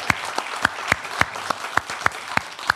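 Applause with a steady run of about ten sharp, evenly spaced claps standing out over a dense wash of clapping, moderately loud throughout with no voices.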